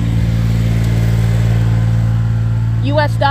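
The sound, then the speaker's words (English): A truck with a New York license plate idles in a parking lot with a deep, steady rumbling drone that stays loud and even throughout; a person briefly starts speaking over it near the end. “This is a truck that has a New York license plate on the back of it, 49812PC.”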